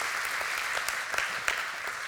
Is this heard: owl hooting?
no